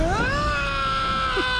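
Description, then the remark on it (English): A loud, drawn-out scream sound effect, played to introduce a mail segment, rises quickly in pitch, then holds a steady, shrill tone for over a second, piercing and alone with no talking. “Do we have a mail, as in time for a mail scream?”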